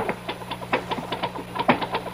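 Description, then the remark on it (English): Rapid, fairly steady typewriter keystrokes from a man working at his typewriter up a ladder, a dozen or so crisp clacks at a brisk uneven rhythm, with one louder strike near the end, over a faint low hum and no talking. “I mean, I hear him, his typewriter.”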